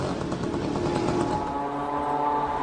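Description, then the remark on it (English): A small Chinese-sourced moped or scooter engine, a 50-horsepower Motto MD-550 powering a flying drone, drones loudly and steadily, a buzzing, rasping tone with a rapid pulsing beat that smooths out toward the end. No one speaks. “This is a small moped engine, or scooter engine sourced from China, at a cheap price.”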